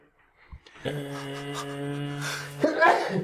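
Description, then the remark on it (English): A single sneeze: a drawn-out, voiced inhale building for over a second, then a sharp, breathy burst at the end. “Bless you.”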